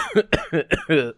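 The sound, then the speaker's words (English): A quick run of about five harsh coughs in rapid succession, each a short raspy burst with a throaty, voiced edge, from a person who has been coughing for three days without being sick. No talking. “I just keep coughing a lot.”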